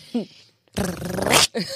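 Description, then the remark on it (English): A person imitates a dog's playful growl, a rough, rising snarl lasting under a second, framed by brief vocal sounds. “He's playing. I'm like, no, he's not playing.”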